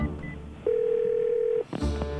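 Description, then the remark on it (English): A steady telephone dial tone hums for about a second, then cuts off and is followed by a few short keypad tones and clicks as a number is dialed, clear. “I've made a lot of calls like this. Cold calls that went nowhere.”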